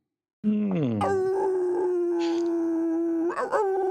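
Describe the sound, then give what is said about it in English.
A single loud wolf howl, sliding up in pitch and then held as a long steady note before breaking into a brief wavering finish, with no other sounds around it. “and by the howl of Wolfkin”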